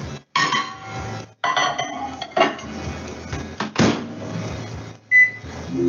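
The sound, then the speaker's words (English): Clatter of a dish of butter being set inside a microwave to melt for 30 seconds for cookies, with knocks and a door clunk, then a short electronic beep near the end. No one speaks. “Microwave for 30 seconds.”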